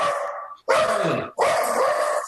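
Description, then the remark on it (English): A dog barks and growls in three loud bursts separated by brief pauses, each one harsh and sustained with a rough, snarling edge. “My dog's going nuts.”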